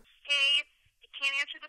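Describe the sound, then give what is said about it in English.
Two short, even electronic ring bursts with a pause between them, heard faintly through a phone on speakerphone, a call ringing out on the other end. “So let's call this number real quick. Let me just go to my phone.”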